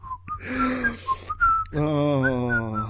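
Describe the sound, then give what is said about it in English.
Someone whistles a short melodic tune, clear, with sliding pitched notes, followed by a breathy humming or sung tone with rich harmonics near the end. “I see your spoilers and raise you whistling.”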